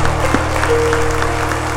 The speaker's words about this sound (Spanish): Si tú crees que esa oración se hace real en ti, dale un aplauso al que vive, al que reina.